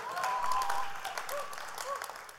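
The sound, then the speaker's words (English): An audience at West Frederick Middle School applauds steadily for a couple of seconds for filling 13 additional shelves in the school food pantry, many hands clapping in a dense, even patter, with a few faint voices and whoops rising through it. “You guys can clap for that.”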